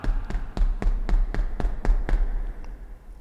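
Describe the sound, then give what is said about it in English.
A quick, steady run of about nine knocks on the front door of a house, fairly loud, ending abruptly after two seconds, with a low hum underneath and no one speaking. “Walk up to the door. I'm knocking.”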